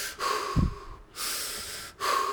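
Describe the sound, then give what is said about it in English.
A voice imitates heavy, labored breathing: three long, loud breaths in steady succession, each a rough rush of air with a wheezy edge and short pauses between, imitating a man breathing hard while intently focused on a glass. “He just is laser focused on this glass, and he's just breathing hard.”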